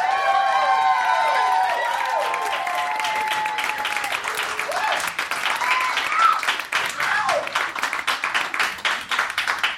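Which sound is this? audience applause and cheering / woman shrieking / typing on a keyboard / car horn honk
audience applause and cheering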